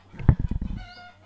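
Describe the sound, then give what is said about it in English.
Chickens cluck in a garden in a quick burst of about eight rhythmic pulses that fade out within a second, leaving only a faint background hum. “Yeah, sorry, just have to see what the chickens are doing.”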